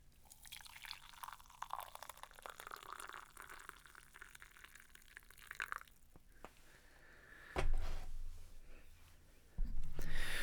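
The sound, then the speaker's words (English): Coffee is poured into a Waffle House mug in a steady, gurgling stream for several seconds, its tone shifting as the cup fills, followed by two soft thuds of the mug or pot being set down. “And while I do, if you don't mind, in the spirit of Southern Surrealism here, I'm going to be drinking coffee here that I made out of this Waffle House mug that I bought not too long ago. So let me pour that first.”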